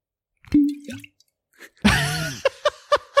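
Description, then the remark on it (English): A hollow cork pop as a bottle of Old Elk whiskey is opened, then a splashy rush of liquid followed by four quick, rhythmic glugs as it pours. “That was me opening a bottle of Old Elk.”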